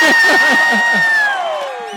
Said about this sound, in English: Yeah, Shout out to the big dog. Can the big dog get a round of applause? I like this. Where's all this love coming from? I like this.